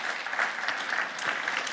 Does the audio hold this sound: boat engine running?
no